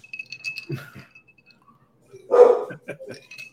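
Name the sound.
pit bull dog barking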